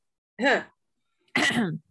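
repeated coughing

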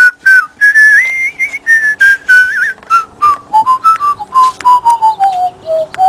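human whistling a tune

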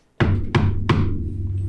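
knocking on a door

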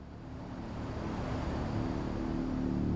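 car driving on road

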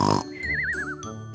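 loud snoring

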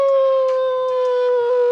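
werewolf howl

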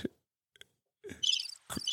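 crickets chirping sound effect

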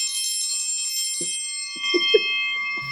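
bell ringing

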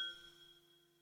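glasses clinking

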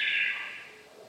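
bird call

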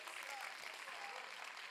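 audience clapping hands

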